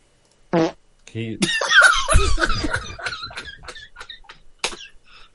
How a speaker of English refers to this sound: he broke the silence when he broke wind